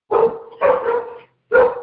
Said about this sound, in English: They're hearing dogs bark outside, and then they want to go off. I want to say, what you got, a Great Dane? No, they are just reckless dogs. That's all good. It's two of them, and they're just crazy, doing whatever they want to do